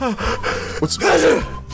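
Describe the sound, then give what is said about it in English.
A sharp breathy intake followed by a loud, noisy burst of a sneeze, lasting under a second, with no talking around it. “Wow, Gesundheit.”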